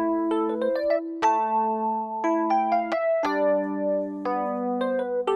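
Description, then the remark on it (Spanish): A simulated Fender Rhodes electric piano, its bell control set for a cleaner, brighter attack, plays a short phrase of chords and single notes, each struck with a clean, bright, bell-like attack that rings on and sustains before the next, heard alone with no talking. “Y se le puede cambiar un control que se llama el de la campana, que le da un ataque más limpio, más brillante, como este.”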